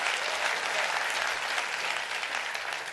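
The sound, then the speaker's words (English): An audience claps their hands in steady, sustained applause, a dense wash of many overlapping claps holding at an even loudness for the full three seconds with no voices standing out. “Somebody clap your hands and rejoice in that.”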